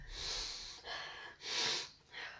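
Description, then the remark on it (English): Four breathy sniffs of essential oil in a row, each a hissing inhale of under a second with short gaps between, fairly loud with no talking. “Stop sniffing that.”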